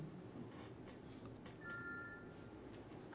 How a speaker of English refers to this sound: Is that your phone or my phone? Okay, good. I thought it was mine.